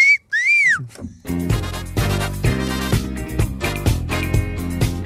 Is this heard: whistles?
yes